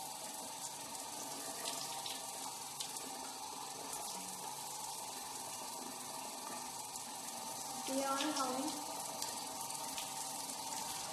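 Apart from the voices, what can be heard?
shower water running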